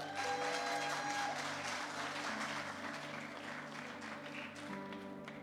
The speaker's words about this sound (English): Why don't you clap your hands as Pastor Lisa comes up?